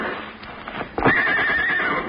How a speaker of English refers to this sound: Horses. You got horses hidden back in the woods.